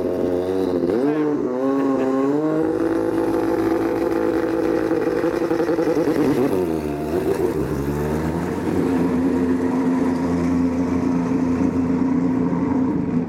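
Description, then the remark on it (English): A loud LMP1 race car engine revs as the car pulls away from its pit box, its pitch rising and falling through gear changes, with a brief dip midway before it climbs again, continuous throughout. “I think we need to improve Charlie's clutch control. He's just left the box in the LMP1 car.”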